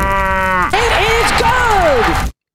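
A single loud cow moo lasting about two seconds, starting steady and then breaking into a strained, wavering, rasping bellow before cutting off abruptly.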